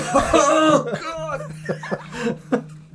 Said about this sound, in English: Oh, yeah. I should cough.